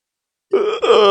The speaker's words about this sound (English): Sorry, mate. Second yawn of the show.